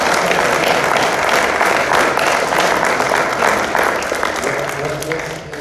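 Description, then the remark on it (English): An audience gives a second round of applause: a crowd claps steadily in a dense, sustained round that holds for several seconds, then thins slightly toward the end. “I know we just gave a round of applause. Can we do it one more?”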